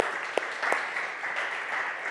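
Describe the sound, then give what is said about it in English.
A short burst of applause from a small group at a morning church gathering, celebrating a newly married couple: dense overlapping claps with a few sharper individual ones standing out, steady and moderately loud for about two seconds with no talking. “They got married a couple weeks ago, so we can give them a round of applause for that.”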